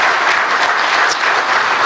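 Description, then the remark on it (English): An audience bursts into steady, loud applause, a dense wash of many hands clapping at once that holds evenly for the whole moment with no voices standing out. “Oh, you can clap right there.”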